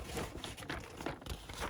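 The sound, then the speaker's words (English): Continuous rustling and crinkling of wrapping paper being handled, with irregular crackly bursts rising and falling over a couple of seconds and no voices. “So, I'm gonna put that one to the side along with the classic paper.”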